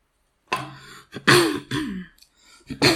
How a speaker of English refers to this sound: Okay, let's cough.